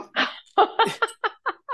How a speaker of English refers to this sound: Oh, and your dog is in agreement. It's like a bark on cue. Well, he's trying to actually jump the fence. He may get it one day.